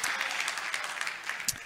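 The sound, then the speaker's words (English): An audience in a decorated auditorium claps steadily, a dense patter of many hands blending into a continuous wash of applause, moderately loud and without any voices over it. “That's definitely worth clapping about.”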